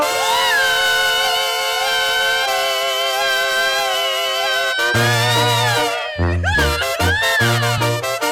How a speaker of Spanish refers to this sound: Tócamela de nuevo. Que esta le gustó a la raza. Que se escuche ese pinche grito.